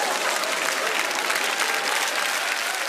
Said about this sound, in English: Hey. We're going to have to get some crowd noise or something. We're going to have to get something.